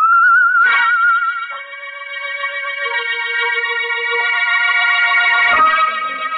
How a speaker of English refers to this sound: We went through that neighborhood with a sieve. But we couldn't find the guy who whistled that queer tune.